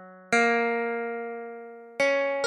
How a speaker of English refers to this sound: It's a project made by Stephen Laporte and Mahmoud Hashemi. They wrote a program that turns every edit of a Wikipedia entry into a sound. Whenever someone adds information, you hear a bell. And when they delete something, you hear a string plucked.